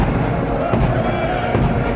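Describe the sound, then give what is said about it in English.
Two heavy booms from ceremonial guns, about a second apart, ring out over a dense, steady wash of crowd noise during the solemn funeral procession of the Queen's coffin from Buckingham Palace to Westminster Hall. “The solemn procession was punctuated by booming guns and funeral music chosen by the Queen herself.”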